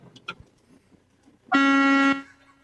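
A single loud, steady truck horn blast lasting over half a second, honked on request to signal the driver is out there, following some faint background rumble and a couple of brief knocks.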